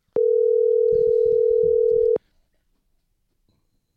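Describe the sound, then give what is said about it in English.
An outgoing phone call ringing through: one loud, steady, mid-pitched ring tone holds for about two seconds over faint muffled rumbling, then cuts off into near silence. “So, let me call Jay real fast.”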